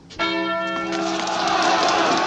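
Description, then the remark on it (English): A bell chimes with a sharp strike and long, ringing harmonic tones as a students' race is about to start, while a loud, broad wash of crowd noise from the students lining the route swells up beneath and gradually overtakes it. “And there's a great build to the run as we hear the chimes and students like kind of make these corridors and then they go.”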